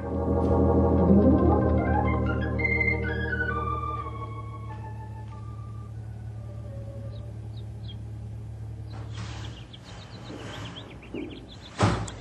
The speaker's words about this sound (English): There you go, slamming that there screen door again. Won't you never learn?